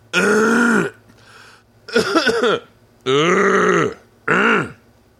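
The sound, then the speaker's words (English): A person clears their throat loudly and theatrically, four drawn-out, gravelly bursts, each lasting under a second and separated by short pauses, with no talking. “It'd be great if he was like, "Let me clear my throat."”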